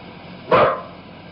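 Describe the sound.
A girl's voice lets out one sharp, dog-like bark, loud, lasting a fraction of a second against a quiet background hiss.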